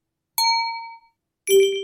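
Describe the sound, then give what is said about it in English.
Two bright, glassy Apple Mac computer alert chimes, the Glass sound and its macOS Big Sur version Crystal, play one after another, the first a clear high ding that rings out and fades, the second a slightly lower, fuller tone after a short pause. “Okay, we're moving on to a sound called Glass, which has been renamed Crystal in Big Sur.”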